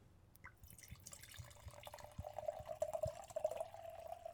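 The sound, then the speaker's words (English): Wine pours steadily into a glass, a gurgling trickle that starts with a few drips and builds into a continuous stream rising slightly in pitch as it fills. “All right, here's the pour.”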